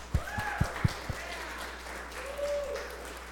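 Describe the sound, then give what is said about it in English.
A church audience breaks into steady applause during a morning service, with a few loud claps near the start and scattered whoops rising above the crowd noise. “Can we just give somebody a round of applause this morning?”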